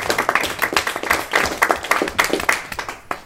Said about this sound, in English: Let's give this man a round of applause.